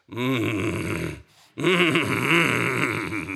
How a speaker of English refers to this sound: she'll sit next to me and she will groan and groan and groan